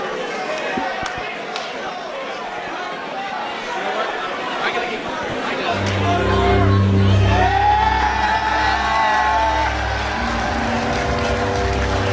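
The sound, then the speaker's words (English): A wrestling crowd cheers with a steady roar of chatter, shouts and whoops as the Invisible Man makes his way to the ring. About halfway through it swells louder as a deep, sustained booming tone rises beneath the noise. “A round of applause and ovation for the Invisible Man making his way to the ring.”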